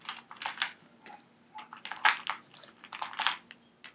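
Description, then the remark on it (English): A handful of dice clatter and click together as they are scooped up and rolled for a tabletop role-playing game attack with two scimitars, a rapid scatter of sharp taps over a few seconds with no voices. “got enough dice? Yeah, it looks like it.”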